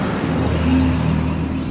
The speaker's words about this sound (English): I'll wait. Waiting for a fire truck.